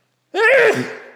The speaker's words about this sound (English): Excuse me. Bless you. Good Lord. Thank you. That was a violent sneeze. Peaked my mic. Wow, that was unexpected. I expected it. I could feel it brewing.